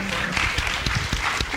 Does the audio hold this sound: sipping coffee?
no